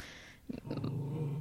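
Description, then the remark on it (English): A dog named Agnes growls: a couple of short gruff huffs, then a steady, low, rumbling growl that holds for nearly a second. No one speaks. “Of course, my dog Agnes is here.”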